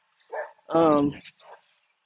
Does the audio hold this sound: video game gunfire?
no